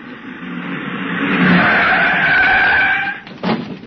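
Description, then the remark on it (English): A car skids hard, tires screeching in a sustained, loud squeal for about three seconds before lurching to a stop with a brief thump. No voices are heard. “Have a look in the car, will you?”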